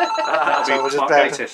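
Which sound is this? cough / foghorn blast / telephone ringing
telephone ringing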